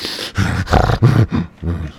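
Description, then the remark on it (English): A man growls and snarls in a rough, wolf-like voice, about five loud bursts in quick succession with short breaks between them, a human imitation of a wild animal. “Man, see, this shit's like turning me into a wolf or something.”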